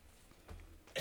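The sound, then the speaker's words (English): A single sneeze: a brief, low, breathy build-up followed by a sudden loud, hissing burst at the very end. No one speaks. “Bless you. God bless you.”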